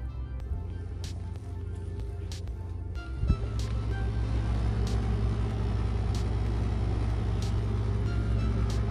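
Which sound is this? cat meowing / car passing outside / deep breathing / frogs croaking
car passing outside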